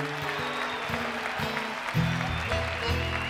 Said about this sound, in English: Folks, let's have another rousing cheer for the great ….